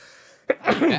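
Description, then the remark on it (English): A single sharp sneeze bursts out after a brief quiet moment, loud and breathy, with no talking around it. “Bless you.”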